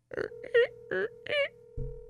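A steady electronic phone tone hums through a speakerphone while the call connects, with short bursts of voices talking over it before the tone cuts off.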